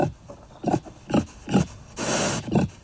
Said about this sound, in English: Enter the next suspect in the fox's demise, the feral pig.